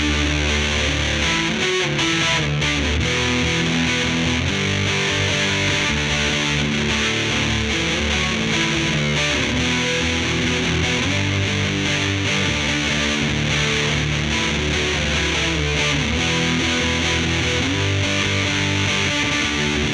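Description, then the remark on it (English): Electric guitar run through a Solidalis Storm overdrive pedal together with a Big Muff, playing a steady stream of gritty, sustained chords and notes that shift every second or so, loud and saturated, with no one talking. “Let's kick in the Storm and see how that changes the tone.”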